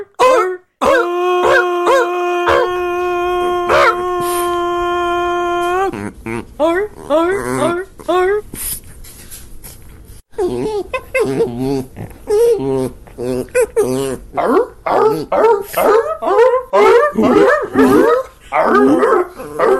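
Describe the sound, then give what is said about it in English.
A person imitates a sea lion's bark: two short gruff calls, then a long, loud, drawn-out honking cry. Lively talking and laughter follow. “Okay, here's my best attempt at a sea lion sound.”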